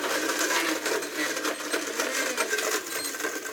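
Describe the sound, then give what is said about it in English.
A blender blending yard clippings, lemon and ice runs steadily for a few seconds, a harsh, bright whirring roar with irregular rattling bursts as ice and chunks churn inside. No one speaks. “Put it in the blender and some ice.”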